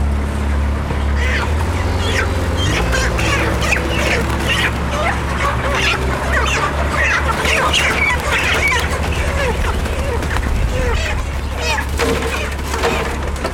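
A flock of chickens in Cappoquin clucking and squawking continuously, many overlapping calls, over a steady low mechanical hum throughout.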